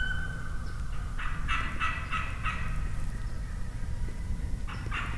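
An Osceola wild turkey gobbles in a rapid, rattling burst during a turkey hunt, then gobbles again more briefly a few seconds later, over a steady low outdoor rumble with no talking.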